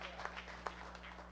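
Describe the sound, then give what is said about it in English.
Scattered hand clapping from an audience, with a couple of sharper claps standing out among softer, uneven ones. The claps are quiet, over a steady low electrical hum. “Ooh, these hand claps.”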